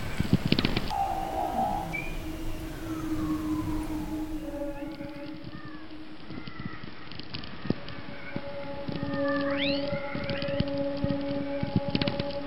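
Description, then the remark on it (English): Seals whistle underwater in Antarctica in winter, using high-pitched whistles to work out where things are: long descending glides, steady high tones and quick upward chirps overlap one another against a low rumbling background, with no voices. “But in the docks of the winter in Antarctica, they've worked out that they can use high-pitched whistles and similarly work out where things are.”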